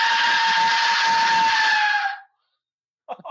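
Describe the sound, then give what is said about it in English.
An Aztec death whistle blown once by a child outside, a loud, harsh, screaming shriek with a breathy hiss, sustained about two seconds before cutting off, followed by silence and the start of another brief blast. “Is your kid blowing the Aztec death whistle?”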